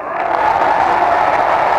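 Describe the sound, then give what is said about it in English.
A large audience applauds and cheers after a speech by Franklin Roosevelt in a sustained, dense roar of clapping that stays loud and steady throughout, with no individual voices standing out. “And that applause just goes on and on and on and on.”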